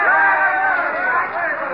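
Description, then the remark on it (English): A crowd gathered in the street around an argument murmurs steadily, many overlapping voices blending into a dense, continuous babble with no single word standing out, holding a fairly even loudness throughout. “Look at that crowd behind me.”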